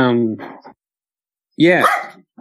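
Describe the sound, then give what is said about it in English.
A female dog with a condition that keeps her from barking well gives two strained, hoarse barks, separated by a short silence. Each bark is drawn-out and wavering rather than sharp, and moderately loud. “This poor dog has got a condition so that she can't bark well.”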